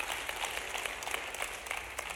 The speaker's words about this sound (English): Could you put your hands together and give a clap offering of praise to Jesus?